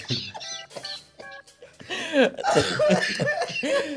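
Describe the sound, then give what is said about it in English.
A loud fit of harsh coughing, several rough bursts in quick succession, growing heavier and more continuous toward the end, with a few strained vocal sounds at the start. “Not with that cough.”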